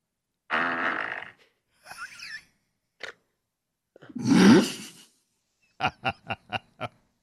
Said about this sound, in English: What was that? What? I think she farted. They're dead. Those kids are down for the count. Was that you? He's dead. That was a big one.